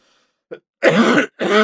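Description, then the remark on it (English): A loud wet cough: a short catch followed by two harsh, phlegmy bursts with a brief pause between them, with no talking. “That sounded kind of wet. Yeah, it is wet. I'm like coughing up a bunch of stuff still for like since January.”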